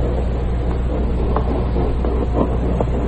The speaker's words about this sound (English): Tonight's file opens aboard a freight train that's slowly climbing a mountain grade.